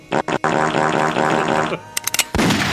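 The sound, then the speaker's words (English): A few sharp, sudden gunshots crack out, some early and a quick cluster later, set against a loud sustained tonal drone that drops away before a noisy burst at the end. “Why is there a gun like in there?”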